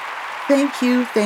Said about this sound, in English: Applause. Yay!